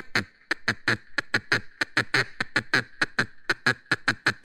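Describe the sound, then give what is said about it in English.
A hen duck's rapid feed call while eating: around twenty short, raspy quacks tumbling out in quick, slightly uneven succession, fairly loud, with no talking. “But the hen, she does a feed call. She does this when she's eating.”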